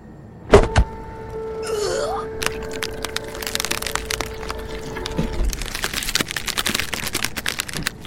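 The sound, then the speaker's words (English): A sharp crack gives way to a sustained, shrill mechanical whine with a brief warbling sweep, like a hydraulic press grinding into action, then dense crackling and splintering bursts take over toward the end. “the hydraulic press grinds to life. James almost smirks when he hears the sound of the shrill metal whining”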